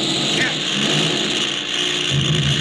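A propeller fighter plane's engine, hit and on fire, roars loudly and steadily, a dense droning rumble that fills the whole short stretch with little change in pitch or volume.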